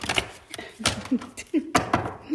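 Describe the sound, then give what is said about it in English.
A deck of cards being shuffled before being cut, with several crisp papery bursts and slaps in an uneven rhythm and a faint voice murmuring between them. “This is the shuffling of the cards.”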